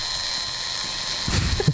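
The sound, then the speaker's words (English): A battery-operated vibrator buzzes in a steady, high-pitched electric whine, briefly rattling and knocking against something near the end. No voices. “Sounds like a razor. Or a dentist drill.”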